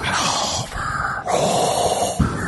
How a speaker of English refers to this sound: Will you stop breathing into the microphone?